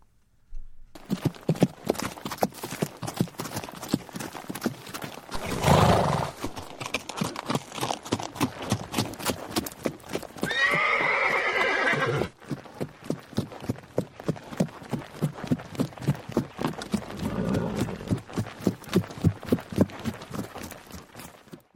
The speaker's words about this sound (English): What you just heard are horses. Poland has been known for its exceptional Arabian horses for decades.